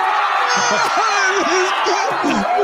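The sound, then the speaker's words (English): A crowd roars and cheers wildly, a dense, steady wall of many voices with scattered high whoops and shouts rising above it, loud throughout. “This crowd is going nuts, bro.”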